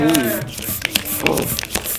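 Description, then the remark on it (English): A balloon being pumped up: steady rubbing and airy hiss with a few short, high rubbery squeaks, moderately loud, and a brief voice at the very start. “It's not gonna pop, I'm literally just pumping it up.”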